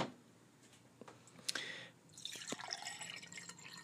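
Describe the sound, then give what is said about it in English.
Water drips in a few sharp plinks, then a denser, steady bubbling and trickling rises and continues to the end as ozonated water is being brewed, with no voices. “I'm gonna brew up the good old fashioned ozonated water right now.”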